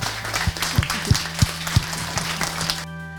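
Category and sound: crowd, audience round of applause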